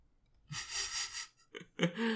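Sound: loud slurping of coffee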